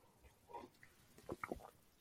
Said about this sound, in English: Sorry, I just had to enjoy a sip of my Nespresso pods. Any coffee drinkers out there, they're big time.